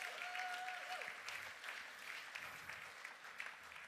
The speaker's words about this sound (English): And so give him a big round of applause.